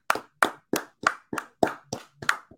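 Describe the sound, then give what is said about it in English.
A short round of applause, from what sounds like one person, celebrating the start of the college basketball preseason: eight sharp, evenly spaced hand claps in a steady rhythm, loud and crisp, with no talking. “Round of applause for the preseason.”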